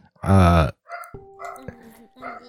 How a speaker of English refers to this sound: She's got, I don't know, like a piece of straw in her mouth, and here go the dogs again.